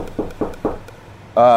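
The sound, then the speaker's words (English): Three firm, evenly spaced knocks on the door of a room next door, followed a moment later by a voice starting to speak. “I'm going next door and knocking on the door”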